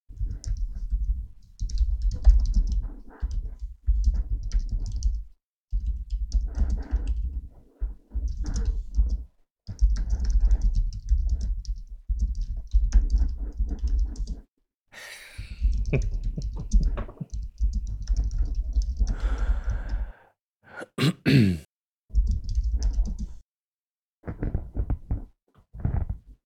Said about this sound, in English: Are you typing?